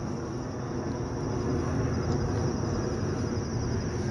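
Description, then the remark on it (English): A steady, low roar of an airplane flying overhead, heard while recording outdoors: a broad rumbling drone that swells slightly midway and holds for a few seconds, with no voices. “And now there's an airplane flying overhead.”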